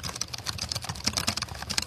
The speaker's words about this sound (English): This is feel those keys. This is the hacked one that I bought. Could you type a little bit for me with those keys?